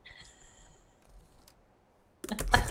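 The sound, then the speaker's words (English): After near silence with a faint tone and one small tick, a thrown pencil strikes a computer in a loud clattering burst that rattles for a moment before cutting off; the hit ejects a hard drive. “When I threw that, it hit something and ejected my hard drive.”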